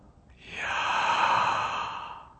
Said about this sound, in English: Breathing in Yah.